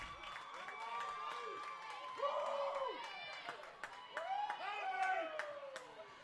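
A rowdy grandstand crowd at a ball game at Southern Union roars and cheers continuously, picked up by a crowd mic, with scattered clapping and overlapping shouts rising in bursts, loud throughout.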